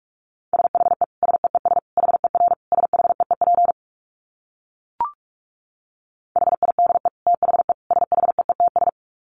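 Rapid Morse code sent at 45 words per minute, keyed on a single steady mid-pitched tone, in two fast bursts of dots and dashes separated by a silent gap with one short click in between.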